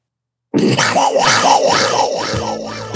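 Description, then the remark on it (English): A person imitates a panther roar with one sustained, loud, raspy growl lasting about two and a half seconds, rising and wavering in pitch before trailing off, starting abruptly after a moment of silence. “I'm going to do a panther roar this time.”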